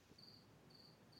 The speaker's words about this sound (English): This cricket's driving me up the wall. But, yeah. Maybe the cricket's on the wall.